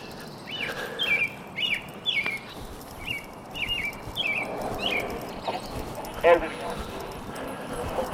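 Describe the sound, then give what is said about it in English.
Many birds sing outdoors in a multi-voiced dawn chorus during morning twilight, one voice repeating short bright phrases at a steady pace while fainter calls and a low background murmur fill in around it. “Certainly is a multi-voiced Don chorus going on, I'll tell you.”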